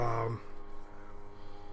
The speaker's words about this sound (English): Bless you. Yeah, damn, I felt it coming.